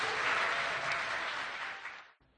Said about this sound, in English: Can we welcome them just with some applause?